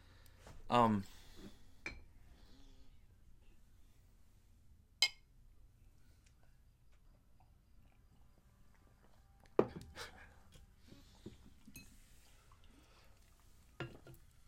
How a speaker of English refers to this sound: Oops. You just poured us a drink. I did not even touch that. How did that happen? I haven't. Cheers, everybody.